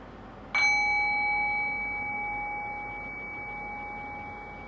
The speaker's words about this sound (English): So I'll ring the bell and we'll begin. So it's meditation time.